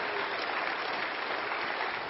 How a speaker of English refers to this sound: I think he deserves some applause.